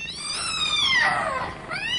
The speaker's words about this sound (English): The cat launched herself, not at Malcolm, but at the luckless custodian. Her eyes blazed with ferocity.